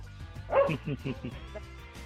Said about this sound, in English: Oh, sorry, the dogs are barking.